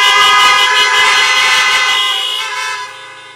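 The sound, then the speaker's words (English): Many car horns honk together at a drive-in church service in a loud, sustained overlapping blare, the chorus of tones gradually thinning and fading over a few seconds outdoors. “If you enjoyed driving church, give me one more honk.”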